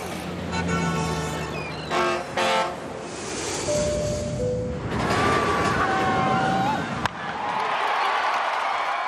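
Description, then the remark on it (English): A quick montage of loud sounds in succession from a skyscraper, car, ship, plane, roller coaster and ballpark: a blaring horn, rushing engine and wind noise, a sustained whistling tone, then a broad roar like a crowd or rushing air, with no pauses. “That was a skyscraper, car, ship, plane, roller coaster, and a ballpark.”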